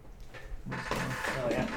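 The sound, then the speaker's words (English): A door is pulled open to let a dog, Luz, out, with a brief, rushing scrape that swells and lingers for about a second, with faint voices murmuring in the background. “You can leave it open. I don't think anybody's in there.”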